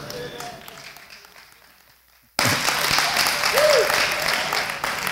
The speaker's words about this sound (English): So forgive us if we choose to applaud ourselves.